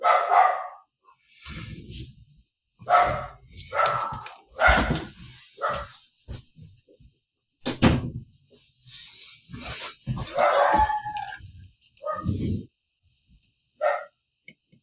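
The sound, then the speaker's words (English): Dogs bark excitedly at a snowplow that just went by after heavy snow, a string of loud, irregular barks and yelps with short pauses between bursts, no one speaking over them. “We've had quite a bit of snow here, and the snowplow just went by, and my dogs were less than fans of that experience for some reason, despite it happening every day for 6 months.”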